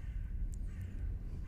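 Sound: raven cawing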